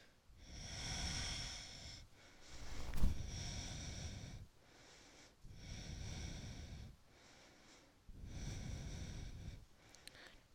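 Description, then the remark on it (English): Slow, deep breaths drawn in and pushed out during a yoga crescent lunge, about five in a row, each a broad airy rush lasting a couple of seconds with short pauses between, fairly loud. “Breathing in and I'm breathing out.”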